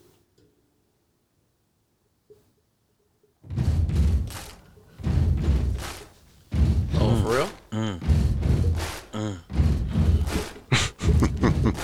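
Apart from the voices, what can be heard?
banging on a table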